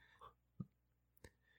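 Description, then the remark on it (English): A few sparse, quiet clacks of five force dice being rolled for a destiny pool in a Star Wars tabletop role-playing game, three short hard taps spread over about a second, with no one speaking. “5 force dice for 1 destiny pool.”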